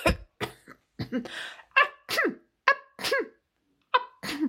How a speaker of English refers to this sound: It just made the king cough and sneeze and made the king very angry.